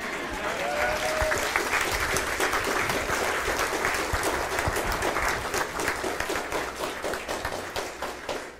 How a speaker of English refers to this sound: And a little bit later, was there an applause back there?